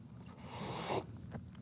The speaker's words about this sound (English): I didn't get much slurp. It was just a sip.